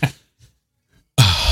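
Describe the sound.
A voice imitates the startled gasp of people filming from a ship: a brief breathy puff, a near-silent pause, then a loud, harsh, rasping intake of breath that cuts off abruptly.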